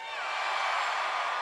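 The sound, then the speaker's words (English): A live audience cheers and whoops together to answer a quick poll on how they eat deep dish, a dense, steady roar of many voices with a few higher shouts rising above it, sustained for a brief moment. “I don't want to hear any booing. And let right? us know by your cheering.”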